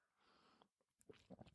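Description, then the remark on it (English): A quiet sip of water: a soft airy slurp lasting about half a second, followed by faint gulping and small mouth sounds, with no talking. “Sorry, I haven't had a sip of water in 20 minutes.”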